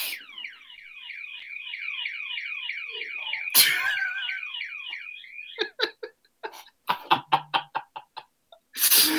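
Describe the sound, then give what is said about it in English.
An electronic alarm, set off by a person, wails loudly in a rapid, repeating warble for several seconds, then breaks off into a string of short, sharp bursts and clicks. “I can't believe now I set the alarm off.”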